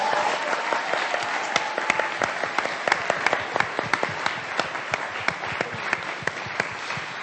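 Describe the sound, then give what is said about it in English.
A crowd applauds steadily for several seconds for the student finalists, dense overlapping claps with a few sharper individual claps standing out, sustained at an even loudness. “And I want to give one more round of applause to all of our finalists.”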